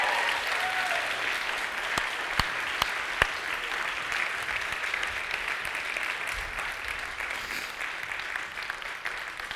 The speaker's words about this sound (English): Well, after three services, how about giving this worship team a round of applause and a laugh?